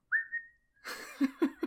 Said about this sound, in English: it seems like a tune of some kind. Oh, okay. Yeah. So it's not like someone signaling, like, hey, there's people here. No, it's not like, it wasn't like a one-off. It's like somebody idly whistling a tune. Are they whistling while they work? Perhaps.